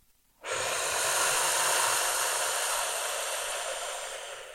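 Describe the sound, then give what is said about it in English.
A single long, deep inhale through the nose during a so-hum mantra breathing exercise, steady, rising abruptly after a brief silence and sustaining airy breath noise for about four seconds before slowly easing off. “We're going to inhale, so.”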